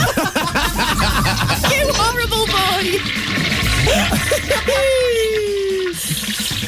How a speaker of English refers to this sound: Sorry, I'm just flushing the toilet there.